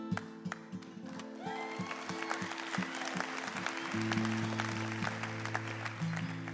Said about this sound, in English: So I really appreciate the applause. Thank you.